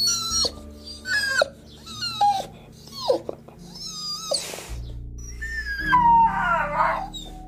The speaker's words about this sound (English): But all night long, he heard the little black dog whining outside his cabin.